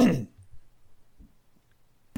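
A short, forceful cough bursts out at the start, then fades into near silence with faint low thumps, and a brief noisy burst arrives right at the end.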